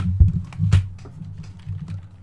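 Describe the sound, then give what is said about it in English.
A few dull, boomy thumps of a computer keyboard bumping a microphone, muffled, with lighter clicks and rustling between them and no talking. “Your microphone is making lots of noises.”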